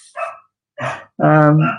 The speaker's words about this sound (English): Sorry, my wife's just come home, so the dog's gone crazy.